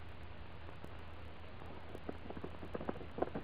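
A horse trots along pulling a sulky around a track, jogging laps, its hooves making a steady, fairly quiet clip-clop that grows more distinct partway through, over a low rolling rumble. No one speaks.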